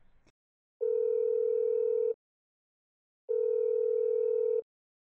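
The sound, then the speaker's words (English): A telephone rings for an incoming call from a homeroom teacher to the Lee family on 12 October 2004, with two long, steady electronic tones, each lasting over a second and separated by a brief pause. The tones are clear, with no voices. “On the 12th of October 2004, a phone call shattered the tranquil and hopeful life of the Lee family.”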